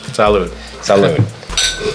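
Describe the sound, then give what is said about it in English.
Glasses of rye whiskey clink together in a toast, a few bright taps mixed in with overlapping voices speaking over them. “Cheers. Cheers, cheers, bro. Cheers.”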